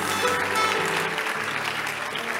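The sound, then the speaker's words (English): A crowd claps steadily, a dense wash of many hands at even loudness, with a low hum running underneath and no one speaking. “If you are not clapping, then you are not yet a Christian.”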